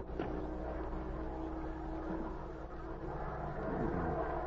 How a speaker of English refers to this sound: Then, from the distance, came the hum of an airplane motor.